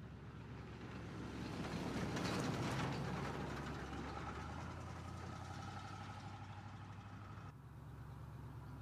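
An Impala car engine idles steadily, a low continuous rumble with a faint mechanical hum on top, holding an even level throughout and easing slightly near the end.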